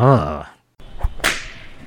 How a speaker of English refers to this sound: It's a bird. It's a plane? Is that a flogger? Someone's gotta be having a good time.